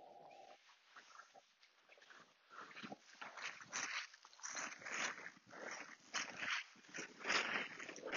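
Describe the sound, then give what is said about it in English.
A dog named Wolf scratches and kicks at the ground of a pathway in repeated rough, scuffing bursts that grow louder toward the end, pretending to bury its poo, with no talking. “Yeah, you pretend to bury it like a fucking idiot.”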